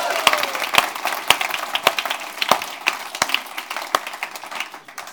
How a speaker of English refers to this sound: Golf clap. Is it a golf clap or is it a bit more? Come on.